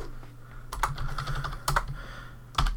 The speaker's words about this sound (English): Was this what you were typing earlier? You were still typing the questions? No, I was replying to. I typed all the questions out very hastily before we started recording.